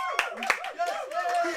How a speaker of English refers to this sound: Excuse me, round of applause for the control room. That was amazing. That was amazing.